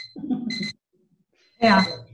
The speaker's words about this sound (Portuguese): Desculpa aqui que tocou o despertador, não era para tocar agora.